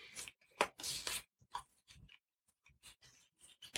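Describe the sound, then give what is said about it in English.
Playing cards being shuffled: crisp, papery riffles and snaps in irregular bursts, including a longer riffle early on, followed by quieter taps and flicks, with no voices. “People just listening to cards shuffling all over the place.”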